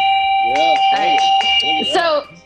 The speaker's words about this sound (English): sorry, it's your yak bell, no cowbell.